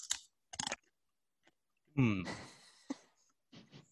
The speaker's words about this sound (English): So I'm munching on my Ravita with some hummus.